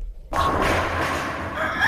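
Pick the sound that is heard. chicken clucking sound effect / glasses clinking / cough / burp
chicken clucking sound effect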